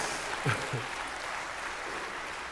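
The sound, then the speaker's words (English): An audience claps steadily for a few seconds, a dense, even wash of applause with a brief voice cry rising out of it early on. “I need the applause, affirmation, please.”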